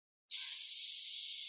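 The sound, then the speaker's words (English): After a brief silence, a person exhales a steady, sustained hiss like a long "sss" as a breathing exercise for voice practice, giving a nice flow of air. It is even and fairly loud, with a constant airy tone and no talking. “And then just, you can practice it just on a hiss.”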